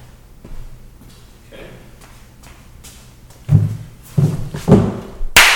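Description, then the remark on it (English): A few seconds of near-silence, then a burst of loud, sharp hand claps in an uneven cluster, the last one especially crisp and bright. “Sorry to clap so loud.”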